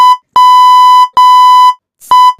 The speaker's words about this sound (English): It's just a beep. I don't think it mutes anything.